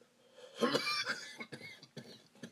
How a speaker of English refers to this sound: excuse me, that wasn't a corona cough.